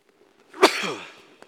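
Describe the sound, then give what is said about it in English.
A speaker pauses mid-talk and lets out a single sharp, loud sneeze, followed by a short breathy trailing exhale and then quiet, with a faint click near the end. “dramatic pause brought on by a sneeze.”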